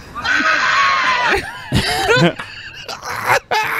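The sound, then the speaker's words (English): A woman being spun lets out a loud, sustained high-pitched scream, followed by several shorter, wavering shrieks and yelps that break off abruptly. “That's my favorite part. That first scream.”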